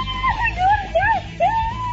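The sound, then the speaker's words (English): A woman's excited, high-pitched screams come through a thin telephone line in a few rising and falling squeals, loud, with no clear words, as a radio caller learns she has won a prize trip to Nashville. “Oh, my God! …, you need to scream more.”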